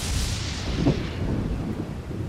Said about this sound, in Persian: باران می‌بارید.